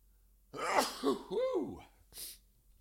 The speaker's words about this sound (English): I'm gonna sneeze.